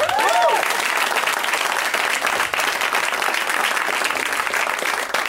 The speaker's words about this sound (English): How about we keep the show going? What do you think? Some people did it again. Some people clapped. I like the mix of it.